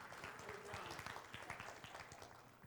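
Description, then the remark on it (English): A crowd applauds steadily, many hands clapping in a dense, continuous patter that holds for a few seconds and fades slightly at the end. “Give these guys a round of applause”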